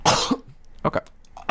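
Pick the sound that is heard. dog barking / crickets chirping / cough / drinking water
cough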